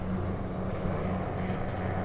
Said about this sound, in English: The next day, as police helicopters continued to swirl overhead